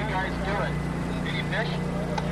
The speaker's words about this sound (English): On a chilly night, a Colville boat with tribal and federal biologists aboard motors to one corner of the 150-mile lake.